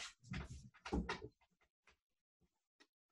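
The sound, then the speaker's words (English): A dog paws and scratches at a shut door, a busy flurry of scraping and rattling that trails off into a few scattered light taps, with no voices. “It's just because the door's shut, he wants it open and he wants to be able to walk in and out.”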